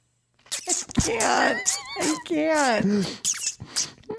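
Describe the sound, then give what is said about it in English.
A voice imitates a big car engine being started with a key, with rough, sputtering bursts and a groaning tone that swoops up and down in pitch, loud, lasting a few seconds. “Took out the key and started the big ol' engine.”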